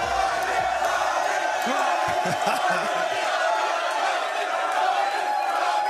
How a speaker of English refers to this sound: Let's also have a podcast of people shouting Robbie for the next thing